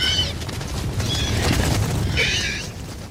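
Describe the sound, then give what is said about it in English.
A pitched-up gallimimus dinosaur call effect made from a horse in heat, chopped up, raised in pitch and panned left and right: three short, shrill, squealing cries, almost like a sped-up whinny, spaced about a second apart over a steady low rumble. “Now, that doesn't quite sound like a gallimimus yet, but if we chop it up, then bring up the pitch, then pan these sounds to the left and right, we can get pretty close to what we hear in the movie.”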